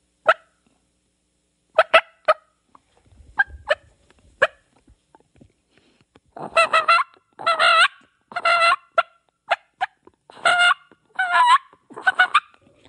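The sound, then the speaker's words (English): A turkey call plays a few sharp, scattered clucks, then shifts into a run of longer, rolling purrs alternating with quick clucks in an uneven rhythm, fairly loud with no talking. “So hit us with some of those more subtle tunes.”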